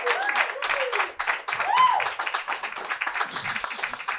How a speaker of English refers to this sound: Y'all start clapping?